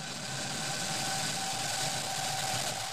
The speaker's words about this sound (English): 10, 9, 8, 7, 6, 5, 4, 3, 2, 1, ignition, engines full power, and liftoff. Go Crew 5.